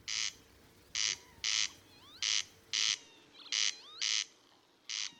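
bird, corncrake call

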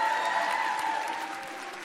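crowd, audience applauding and cheering

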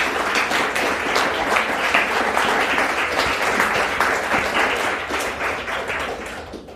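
crowd, round of applause

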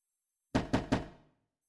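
household object, knocking on a door

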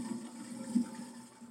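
sound effect, toilet flush sound effect

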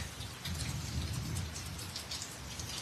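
nature, heavy rainstorm

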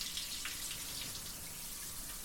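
household object, shower water running

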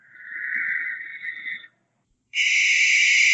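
bird, owl call

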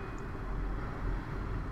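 vehicle, train passing by

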